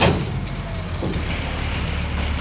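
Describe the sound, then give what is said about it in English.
A steady, heavy engine rumble drones continuously, loud, with low-frequency roar dominating and a faint whine riding above it as a truck-pull sled moves around, lining up to the truck before the first pull. “That's the sled moving around, lining up to the truck.”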